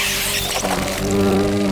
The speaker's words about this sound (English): Oh, wow. That is one enormous wasp.